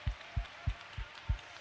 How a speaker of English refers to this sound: Oh, let's clap our hands to Jesus right now.